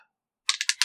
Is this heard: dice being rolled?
yes